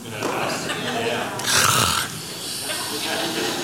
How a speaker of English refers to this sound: You try the yawn, you try all of that, and they just continue to yak.